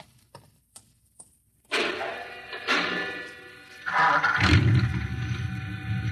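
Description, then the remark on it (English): A few sharp, spaced clicks, then a garage door mechanism starts with a loud, sustained mechanical rattle and roar that swells and deepens into a heavy low rumble toward the end. “You start the mechanism to open the garage door, then jump onto the truck.”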